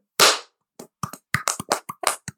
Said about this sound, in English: got lotion on my hands. I'm like, not the best clap.